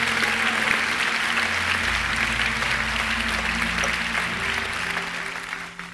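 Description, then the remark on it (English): An audience gives God a hand clap of praise, breaking into sustained, loud applause, a dense wash of many hands clapping steadily for several seconds before tapering off at the end. “Can we just give him one more hand clap of praise? Come on, loud, my birthday.”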